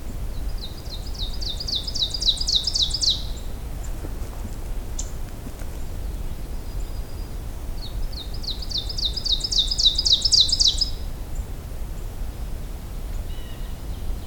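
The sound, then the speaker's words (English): An ovenbird sings two bouts of its rapid, repeated two-note song, each phrase series building in loudness, set against a steady low outdoor rumble with no talking. “This one's the one that you can remember with teacher, teacher, teacher. It always kind of fades in, crescendo.”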